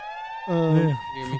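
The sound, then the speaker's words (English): A steady, high-pitched electronic siren tone, played as a sound-effect drop, holds at one pitch for the whole moment, with a voice starting to talk over it partway through. “I gotta find a better drop for a siren or some shit.”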